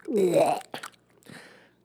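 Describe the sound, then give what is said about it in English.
A mouth-made imitation of chewing and crunching ice: a short voiced hum, then two crisp crunchy bursts, moderately loud. “I'm going to do one that's just me chewing ASMR. Ice.”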